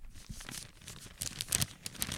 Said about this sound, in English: I can crinkle the paper.